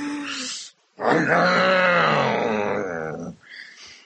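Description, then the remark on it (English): A person imitates a chainsaw with their voice: a short rasping burst, a brief pause, then a long, loud, buzzy growl that wavers in pitch before trailing off into a softer sputter. “That would be the chainsaw. That wasn't him clearing his throat or anything like that.”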